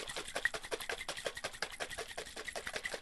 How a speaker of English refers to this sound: And now the next step is to put the lid back on, and I'm going to shake this up really vigorously.